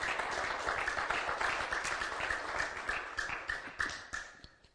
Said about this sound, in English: Give the Lord a hand clap of praise again while you're being seated.